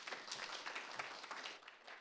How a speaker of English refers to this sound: So thank you, Ruth. Thanks for coming up. Let's give Ruth a clap to say thank you.